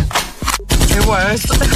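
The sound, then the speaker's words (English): A loud gunshot sound effect: sharp, crackling blasts, broken by a brief silent gap, then more noisy bursts with a tonal, voice-like wail mixed underneath. “That wasn't a gunshot.”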